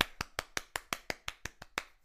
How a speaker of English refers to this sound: So here it is. One applause.